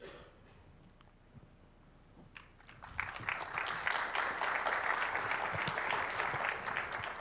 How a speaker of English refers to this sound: I'm hoping you're clapping for him, not for me.